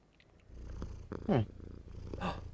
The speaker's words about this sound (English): Why do they purr? When they're happy. We know that. We know why they purr. Is it really when they're happy? Or is it when they're like relaxed?